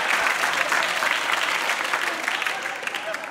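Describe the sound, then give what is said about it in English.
An audience claps in a steady, dense wash of applause that holds at a fairly even loudness for a few seconds, with no clear voices rising above it. “Everybody who claps, you're going to get saved.”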